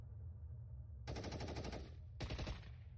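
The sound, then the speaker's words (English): Two bursts of rapid automatic gunfire crackle over a steady low rumble, the first lasting about a second and the second slightly shorter, with no voices present. “Lost mostly to the sounds of gunfire and screaming.”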